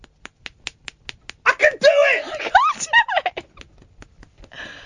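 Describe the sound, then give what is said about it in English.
A quick run of sharp, crisp finger-whip slaps, made by holding the thumb and middle finger and flicking the hand so the fingers smack together, cracks out in a steady rhythm, breaks for a burst of laughing vocal sounds, then resumes fainter. “You hold your thumb and your bird in the middle and you slap that...”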